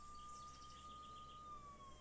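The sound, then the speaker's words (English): A sheriff's police car siren in California wails in one long, steady tone that slowly dips near the end, over a constant background hum, with no one talking. “Turn off your fucking siren, Dad.”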